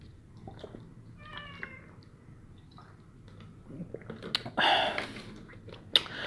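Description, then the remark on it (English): A cat meows at home: a soft, brief mew early on, then a louder, drawn-out meow with a falling pitch, amid light rustling and a sharp click near the end. No one speaks. “the cat is here.”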